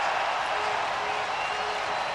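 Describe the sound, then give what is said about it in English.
A sellout hockey arena crowd at a St. Louis Blues game cheers on its feet in a dense, steady roar, loud and unbroken, with no distinct voices, in the final seconds of a 5-0 Blues win. “Another sellout crowd to their feet.”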